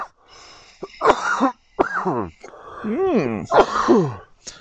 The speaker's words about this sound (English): By episode 21, you've come to expect it. Yeah. I cough.